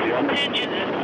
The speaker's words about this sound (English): Oxygen. The engines igniting, the launch command issued. Again, the engines will fire, ramping up towards flight speed.